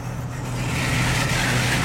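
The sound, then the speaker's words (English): A truck's engine rumbles steadily on the road in heavy rain, a low droning road noise with a broad hiss of passing traffic that grows slightly louder over the couple of seconds. “oh, what's this truck doing?”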